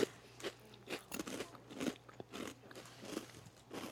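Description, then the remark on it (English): Loud, crisp crunching of hollow, slightly spicy snack pieces, a rapid irregular series of sharp crackly bites and chews with no talking, over a faint steady low hum. “They don't taste like fried chicken, not but they're at all. Good. They're not bad. They've got a little spice to them.”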